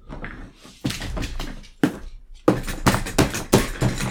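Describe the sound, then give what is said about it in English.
Repeated hard wooden thumps and bangs, irregular and loud, as someone angrily beats up a chair, with a dense flurry of blows in the second half. “is angry and beating up a chair, for those of you who are joining us through audio.”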